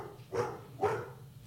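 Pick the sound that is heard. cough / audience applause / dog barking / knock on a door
dog barking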